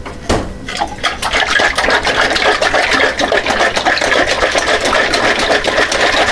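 Rapid, steady sloshing of thick eggnog as a bottle of it, just taken from the fridge, is shaken vigorously, a loud, rhythmic churning that continues for several seconds without any talking.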